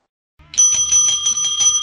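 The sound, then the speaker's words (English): A bright, metallic bell rings rapidly and repeatedly, about half a dozen quick strikes blending into a sustained shimmering ring, loud with no voices. “That's like the good old days. The old bell days.”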